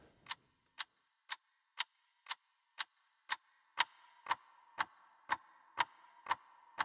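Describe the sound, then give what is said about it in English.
A steady, evenly spaced ticking, about two ticks per second, starts crisp and bright, then turns duller and darker partway through as a filter takes off the highs, with a faint echo from added reverb. “And then I took like a filter and I put that on the ticking sound. So it started really bright and then it kind of, all those highs were taken off.”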